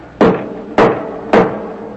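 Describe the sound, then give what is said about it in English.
Three loud, heavy knocks on a wooden church door during Sunday morning Mass, evenly spaced about half a second apart, each with a short booming resonance. No one speaks. “Open the door for whoever it is, please.”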